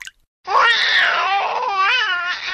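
A colicky baby cries in one sustained, high-pitched wail that wavers and rises and falls in pitch, loud and continuous after a brief quiet start, with no talking.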